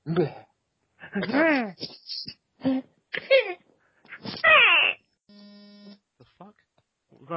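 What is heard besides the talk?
mobile phone vibrating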